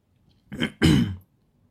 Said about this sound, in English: No, this is not the Corona wala cough. It's just itna bol bol ke.